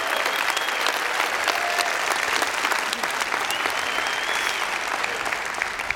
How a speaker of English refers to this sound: But if you served in one of our food pantries this year, would you just stand to your feet right now? And I want y'all to give them a thunderous applause. Thank you so much. Thank you.